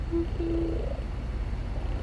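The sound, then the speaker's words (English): A cat purrs in a steady, continuous low rumble, with a couple of brief thin tonal squeaks near the start. No one speaks. “Did you know, and I think I've told you this before, did you know cats purr at a frequency that promotes healing?”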